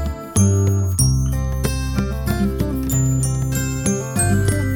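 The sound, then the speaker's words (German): A glockenspiel plays a simple, uneven string of bright metallic notes, each ringing out with a clear tone and lingering shimmer, struck at a loose, unhurried pace with no voices. “Selbst wenn sie noch keine richtigen Melodien auf dem Glockenspiel spielen können, klingt es sehr schön.”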